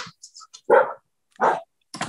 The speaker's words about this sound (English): I'm letting my dog out because she's barking her head off.